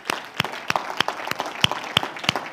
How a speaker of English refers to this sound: Somebody say, in Jesus' name. I think we should give him a big hand clap of praise.